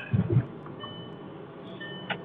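A car's seatbelt warning chime beeps softly and steadily, a few high-pitched electronic tones over a low engine rumble, with a brief thump at the start and no one talking.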